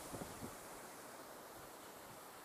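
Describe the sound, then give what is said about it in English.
Steady roar of ocean surf washing onto a beach in Orange County, California, broad and continuous, with a couple of slightly louder surges early on and some wind buffeting the microphone. “Sitting in the ocean right now and looking at the ocean right now as I'm watching these waves crash, this is normal for me now.”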